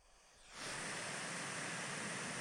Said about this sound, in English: Brown noise. That's brown noise.